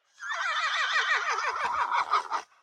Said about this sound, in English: Let me see if you can hear this. Did you hear that? Let me turn the volume up too. I heard it. Yeah, you can hear it. Yeah. So you have horses, all different horse whinnies.